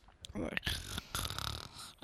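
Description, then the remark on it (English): A voice imitates loud snoring: rough, breathy snorts over about two seconds, ending in a sudden choking snort. “I choked on my snore.”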